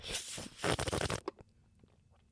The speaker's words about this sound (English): Sorry, that was a lot of burping. I've also been drinking a lot of water, so...